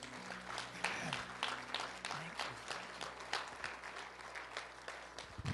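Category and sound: crowd, audience hand clapping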